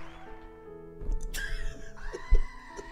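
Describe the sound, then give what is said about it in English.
A person lets out a short, sharp scream in the house, followed by a second strained vocal cry, over a steady humming backdrop of sustained electronic tones. “Screams in the house.”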